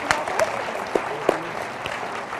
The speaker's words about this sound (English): Would you guys round of applause for these gentlemen?